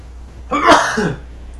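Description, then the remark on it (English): A single sharp sneeze bursts out, a quick loud explosive blast with a short breathy tail, then quiet. “May the Lord bless you.”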